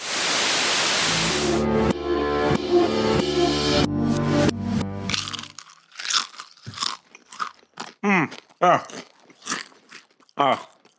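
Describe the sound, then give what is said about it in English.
Loud crunching of potato chips being eaten messily fills the first few seconds as a dense burst of noise, then gives way to people talking. “you're getting fucking chips everywhere!”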